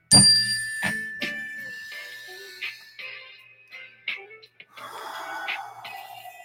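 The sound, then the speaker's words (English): A small mindfulness bell is struck once, its bright, clear tone ringing on and slowly fading while audible breaths in and out sound over the lingering hum. “And every time now that I talk about mindfulness, I got to take a breath with my little mindfulness bell.”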